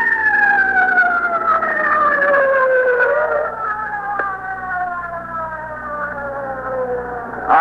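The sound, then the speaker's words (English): A loud ambulance siren wails as the ambulance arrives at the scene of a car wreck, its pitch sliding steadily downward over a low engine rumble, filling the whole stretch with no one speaking. “The ambulance is just coming up here. I can't hear anything you say.”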